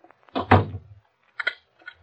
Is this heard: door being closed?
yes